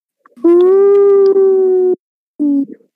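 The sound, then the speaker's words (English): A voice imitates spooky wind howling in a cave, holding one steady, moaning note for about a second and a half, then adding a shorter, lower howl after a brief pause. Loud, with no other sounds. “The cave sounds like spooky howling.”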